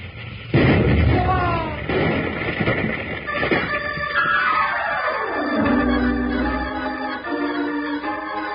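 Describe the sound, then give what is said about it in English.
A steam train wreck with a boiler explosion caused by low water in the boiler: a sudden loud blast erupts into a sustained roaring, crashing din, while a whistle-like tone slides steadily downward in pitch and settles into a lower, ragged rumble. “What's this about low water in the boiler, blowing her up?”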